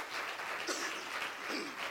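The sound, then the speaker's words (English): A crowd claps their hands one more time after a prayer, before being seated for the morning, a dense wash of many hands applauding at once, sustained and fairly loud throughout with no pauses. “Why don't you clap your hands one more time before you're seated this morning.”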